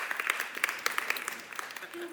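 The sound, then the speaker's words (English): Light, scattered golf-clap applause from a small crowd, a soft patter of polite claps with a few sharper individual hits, fairly quiet and lasting about two seconds. “Nice golf clap.”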